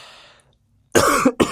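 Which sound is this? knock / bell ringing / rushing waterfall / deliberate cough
deliberate cough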